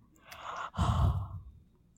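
Heavy breathing blown close into a microphone: a rushing inhale followed by a louder, breathy exhale with low rumbling buffet, then it fades out. No talking.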